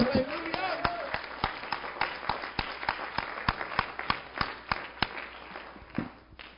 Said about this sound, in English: Give Him a good hand clap of adoration, because He is the answer.